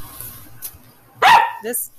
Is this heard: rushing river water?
no